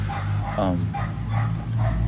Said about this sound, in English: What you're hearing there in the background is a neighborhood dog. Because I should just to give you a little scene setting here, we are sat underneath some beautiful old olive trees at some picnic tables in a little public park, it seems,